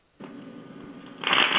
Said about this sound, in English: All right. Let's see if I can blend those into one. See what we get here. Well, these cards don't want to shuffle.